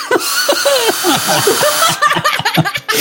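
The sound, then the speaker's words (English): A power drill, kept next to a computer, whirs steadily, its high buzzing motor running under bursts of laughter, then cutting into choppier pulses near the end. “How long have you had that drill next to your computer just so you can make a joke like that?”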